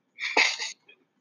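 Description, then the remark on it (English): A single sharp sneeze with a breathy intake, then a burst, fairly loud, followed by a faint short sound after it. “Who the hell just sneezed?”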